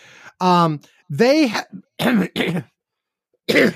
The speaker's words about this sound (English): See, here's what I get on a video call from you, and I catch your cough. Yeah, that's what happens. Yeah, that's how that works.